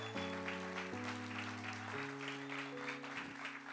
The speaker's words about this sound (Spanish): Y dale un aplauso.